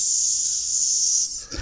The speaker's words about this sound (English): can you get the sizzling sound going?